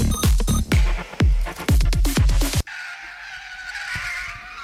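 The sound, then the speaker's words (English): A run of loud, punchy hits with falling booms gives way to a sustained, fairly loud screech of car tires skidding for about two seconds. “Man, what the hell you stopping the car here for, man?”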